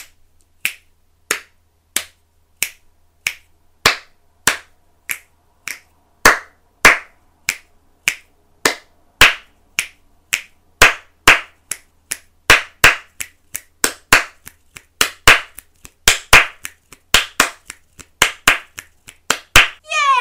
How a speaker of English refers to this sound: So we're going to go click, click, clap, clap. Click, click, clap, clap. Click, click, clap, clap. Click, click, clap, clap. So we'll start off slow.